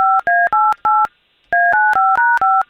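telephone dialing tones

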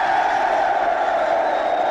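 crowd cheering wildly

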